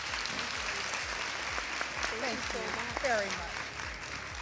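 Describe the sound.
A crowd applauds steadily with dense, continuous clapping for several seconds, and voices cheer and call out over it midway through.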